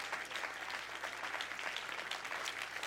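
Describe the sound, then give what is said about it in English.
A standing audience claps their hands in praise to the Lord, a steady, dense burst of applause, many overlapping claps forming a continuous bright patter with no voices standing out. “Would you clap your hands today to the Lord?”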